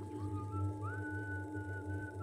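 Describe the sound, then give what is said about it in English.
A man whistles a slow, wavering tune with long sliding notes while adjusting his fine suit, steady over a constant low hum in the background. “A man adjusting his fine suit. The whistling.”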